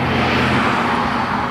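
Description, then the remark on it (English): A steady, loud rumble of road traffic heard during a morning walk, with a broad hiss and a low engine drone holding constant throughout, with no voices. “Jeez, what a lot of traffic today.”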